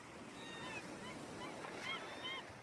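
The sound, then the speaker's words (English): A steady, gentle wash of calm sea waves lapping at the shore by Gloucester, with thin, high seabird cries drifting in a few times over the constant hiss of water; no one speaks. “The sea by the shores of Gloucester seems pretty calm today.”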